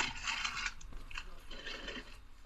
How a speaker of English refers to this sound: It sounds like you're digging into a bag of chips. I was digging into a bag from the University of Colorado, Colorado Springs.